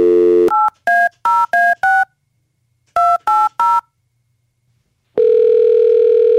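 A steady telephone dial tone cuts off, then a quick run of touch-tone keypad beeps in two bursts as a call is placed to a woman in Evansville, followed by a loud, sustained tone, all clear with no one talking.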